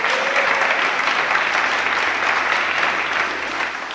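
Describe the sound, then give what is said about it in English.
A crowd claps steadily and loudly for several seconds at a meeting, a dense wash of many hands applauding together that eases off slightly toward the end. “We'll give him a clap.”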